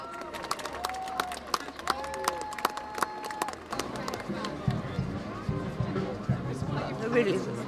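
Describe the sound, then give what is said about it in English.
A busy outdoor crowd of all ages, with many children, murmurs and chatters at St. Paul's, gathered with a band and the official party to greet the Little Amal puppet, with scattered sharp claps and a few sustained tones early on, before the mixed voices thicken into a steady hubbub. “Crowds here.”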